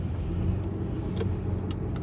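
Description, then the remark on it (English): A car engine hums steadily in a low, continuous rumble as the car pulls in, with a few faint clicks and rattles on top and no voices. “I am pulling in now, so I'm probably going to be getting off my phone soon.”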